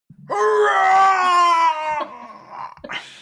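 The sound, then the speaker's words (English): The video game character Clayton lets out a loud, sustained primal scream, a move named Primal Scream, lasting under two seconds, raw, before it breaks off into a few quieter, rougher vocal sounds. “It really starts off strong with just a primal scream, aptly named Primal Scream from our boy Clayton Derulo.”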